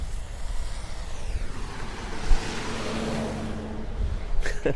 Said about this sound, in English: Wow, the traffic on this road is frustrating.